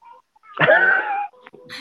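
A dog whimpers, one drawn-out, high-pitched whine lasting under a second, followed by a couple of brief, softer whiny squeaks. No one speaks.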